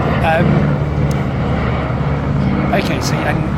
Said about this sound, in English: Airplane coming over very loudly in my ears.